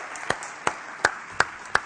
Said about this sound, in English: Clap your hands if you're in a good mood. That's good. There you go.